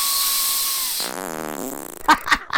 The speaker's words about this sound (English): Oh, no! Oh, I felt the breeze of that. Oh, disgusting. The wind of humanity. Oh, there's the stink. It is you. You are the phantom farter. I have proof. But are you going to release footage of me farting in your face?